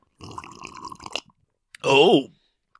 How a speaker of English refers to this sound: it's not hot. It's well, kind it's, of... It's kind of body temperature. Yeah, it's... Yeah. Have a sip of that. Let me just have a little drink of this magical drink. Have a sip.